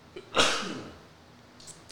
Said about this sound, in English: That shit made me sneeze.